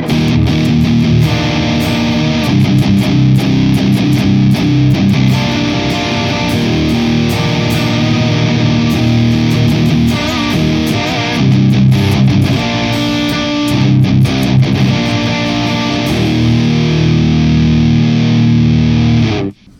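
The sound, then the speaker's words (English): A thick, heavily fuzzed electric guitar played through the Silverback fuzz pedal (Expandora 2 Gear Corner Edition, a one-off build) plays loud sustained chords and riffs for about twenty seconds, with saturated harmonics and brief choppy pauses between phrases, no voices present. “There is the Silverback. Also known as the Expandora 2 Gear Corner Edition.”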